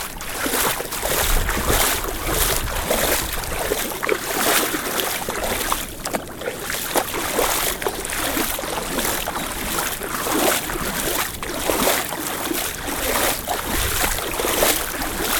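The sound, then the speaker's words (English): Steady, rhythmic splashing and sloshing of water as someone walks through a river, with repeated churning surges and no talking. “walking through the river.”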